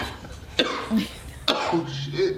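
A cough sound-effect jingle: two sharp coughs sound about a second apart, each a sudden harsh burst followed by a rough, throaty trail, fairly loud with no talking.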